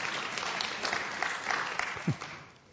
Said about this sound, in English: Thank you very much. Round of applause for those who helped out.